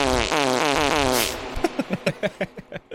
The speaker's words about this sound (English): The fart sound effect for that one. All right, let me find it.